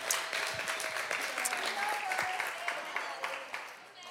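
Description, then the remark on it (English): Steady applause from a crowd, a dense wash of many hands clapping at an even level for several seconds, with faint voices mixed in beneath it. “Can we just give an applause, shout?”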